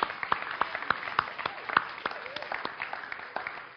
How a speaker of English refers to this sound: So can you all give her a clap?